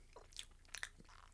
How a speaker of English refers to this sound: chewing the Cheez-Its. They are being dissolved by his mouth juices.